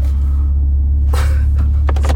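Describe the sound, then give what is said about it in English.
A large truck idles with a deep, steady engine rumble while parking, and short clanking and hissing bursts cut in as it shifts and edges into position. “Man, these guys, these trucks crack me up, man. Trucks parking, the way that trucks park is just very fascinating to me.”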